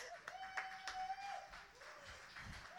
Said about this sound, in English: Everybody clap